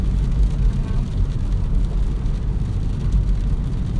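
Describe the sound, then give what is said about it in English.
A small car driving along a road right beside the Gulf of Mexico water line, heard from inside as a steady, fairly loud low rumble of engine and tyre noise that holds constant throughout without any pauses. “Yeah, we're basically driving in the Gulf of Mexico right now.”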